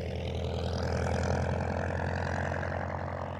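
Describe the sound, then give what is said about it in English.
A propeller airplane engine drones steadily and loudly, a thick low rumble with a rhythmic beating pulse and a faint shifting whine above it, with no voices. “One afternoon, I was all ready to go, waiting for him to take off, when he suddenly cut the gun.”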